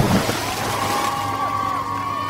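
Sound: water splash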